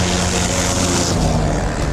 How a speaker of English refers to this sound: climbed aboard a rented Cessna 182 single-engine plane for a routine cargo flight.